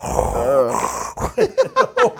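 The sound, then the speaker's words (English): A voice imitates snoring, starting with a long rasping drawn-out breath and then breaking into a quick run of five short, snorting pulses. “Nah, I've dealt with mad girls that snore.”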